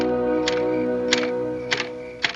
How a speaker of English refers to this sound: Hey, John boy, I can't sleep when that typewriter's going. No one can. I mean it, son. Stop the typing.